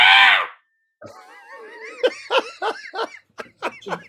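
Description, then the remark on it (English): A barn owl's harsh, rasping screech bursts out loudly for half a second, then after a short pause comes a run of squealing, wavering calls in quick rhythmic bursts. “But but people often assume that's a barn owl, and a barn owl does not make that noise. Not okay. Singly nor in duo. A barn owl makes this noise.”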